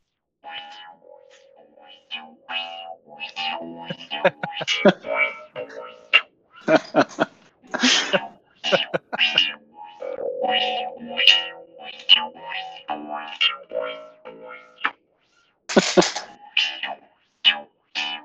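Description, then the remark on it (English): A distorted, effects-heavy bass solo played on a bass harp, in choppy bursts of buzzing, harmonic-rich notes, with sustained tones in places and brief pauses between phrases, moderately loud. “Sick bass solo.”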